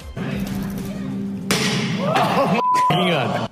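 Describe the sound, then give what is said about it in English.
A sharp, loud crack of the window of Tesla's new pickup truck being smashed at its unveiling cuts through a low hum, followed by people's voices reacting over lingering noise. “Tesla shares like the window of that truck getting smashed today.”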